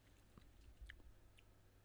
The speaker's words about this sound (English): beef jerky in the teeth. Yeah. No, I was just trying to finish chewing a very chewy piece, gummy piece.